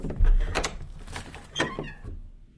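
A pantry door is opened close by, starting with a low thunk, then scraping and rattling movement and a second clatter before the sound dies away into quiet.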